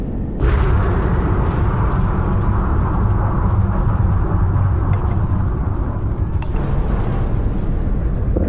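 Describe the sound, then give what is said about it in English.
A large video game spaceship flying by: a deep, dense rumbling roar with hissy edges that kicks in abruptly and stays loud and steady, sounding echoey and reverberant throughout. “The flying sounds sound a little bit different. So, again, this is like a much bigger ship flying around.”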